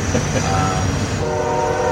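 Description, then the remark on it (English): A train horn sounds at night over the steady rumble of a passing train, a brief tone first, then a longer sustained blast that holds to the end. “Yeah, there it is. There's the horn.”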